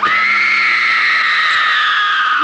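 A young girl in a film scene, having just got into a horse-drawn coach, lets out a loud, shrill, piercing scream that holds steady and unbroken for a couple of seconds, with no talking around it.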